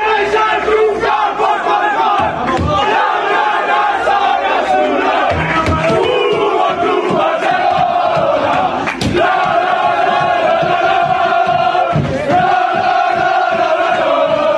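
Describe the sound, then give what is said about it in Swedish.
The Barcelona football team cheers loudly in its dressing room late at night after a match against Osasuna, a dense mass of overlapping shouts and chanting voices that stays at full volume throughout, with sharp louder whoops breaking through now and then. “Det fanns anledning att jubla.”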